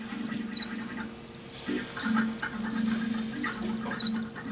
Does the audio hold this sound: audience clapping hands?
no